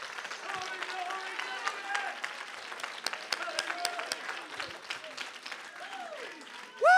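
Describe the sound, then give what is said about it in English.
An audience standing and clapping their hands to give God praise, in dense, steady applause, with voices calling out over it and a loud rising shout at the very end. “Oh, somebody stand to your feet, clap your hands, and give God praise.”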